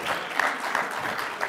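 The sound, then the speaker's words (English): An audience claps steadily and moderately, a dense crackle of many hands with a few sharper individual claps standing out, and no voices over it, voting by applause on whether the video game Enslaved is one of the best games of the decade. “By audience applause, do you think Enslaved is one of the best games of the decade?”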